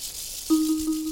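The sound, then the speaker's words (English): A rattlesnake's tail rattle gives a continuous dry, hissing buzz, its shaker muscles vibrating the loosely interconnected rattle segments up to 50 times per second, steady throughout, with a low humming tone joining partway through and holding to the end. “And that's just what that rapid shaking just makes the buzzing sound.”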